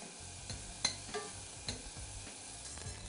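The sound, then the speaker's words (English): Onions, just beginning to caramelize, sizzle steadily in a pan with a soft, continuous hiss, broken by several scraping clacks as a utensil stirs them. Fairly quiet, with no talking. “Okay, now my onions are just beginning to caramelize and those aromatics are smelling fabulous.”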